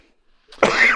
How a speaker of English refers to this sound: All right. Smoker's cough, excuse me.